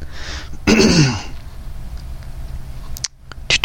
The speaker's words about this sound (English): I know a lot of people are going to get annoyed with that. Me clearing my throat.